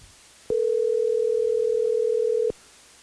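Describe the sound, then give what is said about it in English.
A phone call being placed rings once on the line: a single steady electronic ringback tone that holds for about two seconds, then cuts off sharply, leaving near silence. No one speaks. “So what I'm going to do here now is I'm going to go ahead and call”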